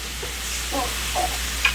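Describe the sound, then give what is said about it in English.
Chicken sizzles in a pan on high heat with a steady, even hiss, joined by a few soft stirring scrapes and one sharp little tick near the end. No one speaks. “So I would say, you know, move the chicken around a little bit, but add some water.”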